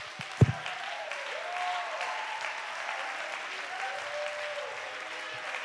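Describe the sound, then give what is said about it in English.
An audience claps their hands at the preacher's urging, a steady, dense wash of applause with a brief sharp thump near the start and faint crowd murmur underneath. “Come on, clap your hand. You in the back, do something.”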